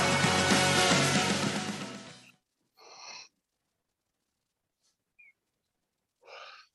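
A big yawn: a loud, drawn-out, rough noisy stretch of about two seconds, followed after a pause by two short breathy huffs separated by silence.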